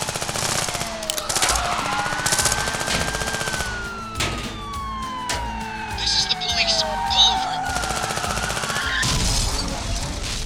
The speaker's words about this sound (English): You've just machine-gunned a cop car.